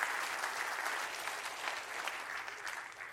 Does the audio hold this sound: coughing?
no